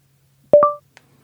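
A phone gives a short two-tone electronic beep after its side button is held down to start dictating a message: a lower tone followed quickly by a higher one, clear and alone, then a faint tiny click just after.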